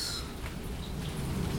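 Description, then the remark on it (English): Steady, unexpected morning rain falls without pause, a dense, even hiss with a soft low patter, heard from under cover on a porch. No voices, only the continuous wash of rainfall. “I have decided to record a quick log on the porch chilling in the rain again, because I wasn't expecting it to rain this morning, and it's kind of nice.”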